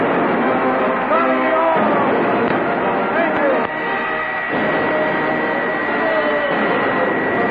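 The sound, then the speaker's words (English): A concert crowd screams and cheers in a steady, dense roar, many high voices overlapping at constant loudness throughout, with a few shrill shrieks rising above the din. “By this time, the crowd was up on their feet screaming.”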